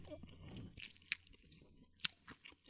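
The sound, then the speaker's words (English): Chewing of a mouthful of jambalaya from BJ's topped with a very hot sauce during a food challenge: a few wet, slightly crunchy bites and squishes in uneven rhythm, fairly quiet, with no talking. “But this jambalaya is already hot as fuck.”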